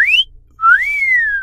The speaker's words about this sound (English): Oh, looks like we've got our first cat call.